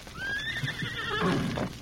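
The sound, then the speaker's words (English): A horse lets out a high, wavering whinny that rises and trails off, followed by a brief burst of hooves clopping, fairly loud with no voices. “Let's get the horses.”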